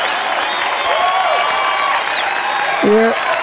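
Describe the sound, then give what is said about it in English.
A packed capacity studio audience cheers and applauds steadily and loudly, with whoops, shouts and sharp whistles rising above a continuous wash of clapping for the whole stretch. “The crowd is here. A capacity audience here at Feather Studios. They're crazy”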